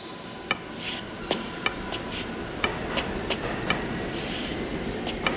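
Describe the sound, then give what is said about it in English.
A subway train rumbles steadily as it pulls away, with sharp metallic clacks at irregular intervals and brief hissing bursts over a low, continuous roar. No voices are heard. “Stop the train!”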